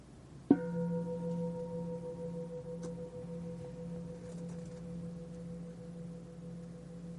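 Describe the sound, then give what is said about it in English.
A single meditation bell is struck once to begin a meditation session, giving a clear, low, resonant tone whose layered overtones hum on and fade very slowly over several seconds, with no voices. “Let's begin with the bell.”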